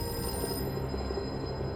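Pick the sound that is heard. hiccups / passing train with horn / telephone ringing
telephone ringing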